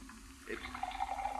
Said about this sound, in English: What are you doing? Just pouring a glass of water for you. Make the vitamin pill slide down easier.